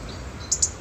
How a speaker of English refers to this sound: I think we've been serenaded by robins before now. Perhaps it likes my cinnamon latte.